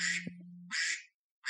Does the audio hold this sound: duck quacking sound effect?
yes